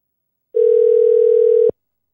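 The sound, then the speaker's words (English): A steady, loud phone dial tone, heard while placing a call, holds at one pitch for just over a second, then cuts off abruptly with a small click; no voices accompany it. “So we're going to call”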